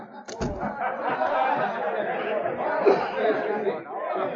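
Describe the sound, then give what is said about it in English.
Steady crowd chatter fills a cafe with a stage, many overlapping voices blending into a continuous murmur with no words standing out, opened by a couple of quick sharp clicks at the very start. “She pushed her way through the crowd toward the stage until she felt a hand on her arm.”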